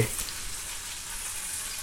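Candied peppers sizzle steadily in a hot pan, a continuous bright crackling hiss with no voices.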